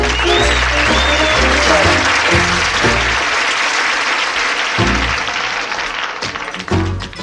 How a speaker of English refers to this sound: Y'all do me a favor. How about a round of applause for the band?